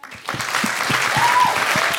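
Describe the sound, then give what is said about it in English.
An audience breaks into steady, sustained applause after a poem is read, many hands clapping together in a dense, even wash of sound that swells quickly and holds at a fairly loud level. “Oh, you don't have to clap.”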